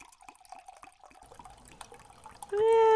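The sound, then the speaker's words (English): A homemade carbonated drink is poured with soft splashing and gurgling, ending in a loud, rising ringing tone as a glass fills up. “Let's see if I get any bubbles.”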